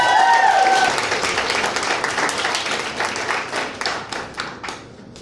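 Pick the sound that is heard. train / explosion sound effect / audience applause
audience applause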